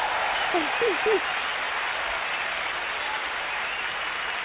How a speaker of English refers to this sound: My motherfucking applause button, that goddamn it.